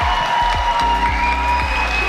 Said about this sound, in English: Almost $22 million raised by all of you. Let's give yourself another round of applause.